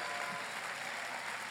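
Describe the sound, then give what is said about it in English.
A church audience claps steadily in a dense, continuous wash of applause given to Jesus during a bilingual Spanish-English sermon, fairly loud and filling the whole short stretch with no pauses or talk. “Go ahead and give Jesus a strong round of applause.”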